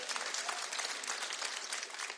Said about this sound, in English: Clap if you agree, man.